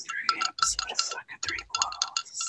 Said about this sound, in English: I had to go get some iced tea because I like that's a good ASMR noise. Oh yeah. Yeah, can you hear the ice clinking around?